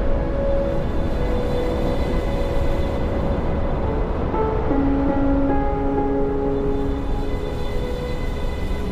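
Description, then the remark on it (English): Ocean waves wash in a steady, continuous roar with no clear breaks, joined by faint sustained tones humming over the surf throughout. “Listen to the waves.”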